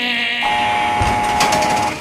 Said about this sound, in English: When there is a noise, like a steel gate opening because the guards are going to come down to tier, it's just nerve-wracking to hear that noise. Coming onto the tier, it's a heavy steel door, and it opens electrically, which means you hear...